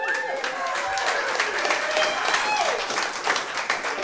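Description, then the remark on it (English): An audience at a live local music show at the Brown County Inn claps steadily and loudly, a dense wash of handclaps with whoops, whistles and shouted cheers rising over it for several seconds. “Give it up for y'all for showing up for local music.”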